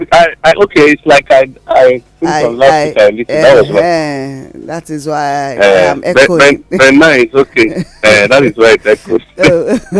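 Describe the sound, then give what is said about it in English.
A man's voice, the host of the paper check program on Inform Me Radio, talks steadily, with a hollow, echoing ring trailing after his words, as if each phrase bounces back faintly. “why am I echoing?”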